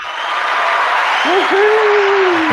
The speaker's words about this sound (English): Woohoo! We need some applause, Ryan.